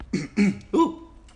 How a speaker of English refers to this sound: Ooh, excuse me. Clear my throat for a second.